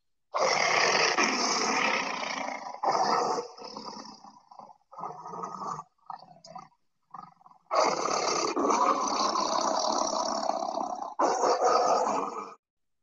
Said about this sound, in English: And I mean, that is a roar that has really earned its stripes, because that's a tiger roar, which, again, not being biased because they're my favorite animal, but it is the most impressive big cat roar. That roar goes through you on another level.